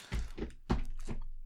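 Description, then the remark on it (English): A person acts out footsteps by stomping their feet: four heavy thuds in an uneven rhythm, each a dull low thump with a slight scuff, the third landing hardest, with no talking over them. “What was that little dance you did? Was it meant to be footsteps”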